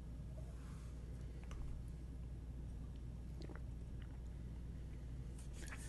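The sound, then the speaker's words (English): A few soft sips and wet mouth sounds as someone drinks a beer at 64 degrees, almost room temperature, scattered brief slurps over a steady low background hum, with no talking. “And let me take another sip here and try to put some hop flavors into your ears.”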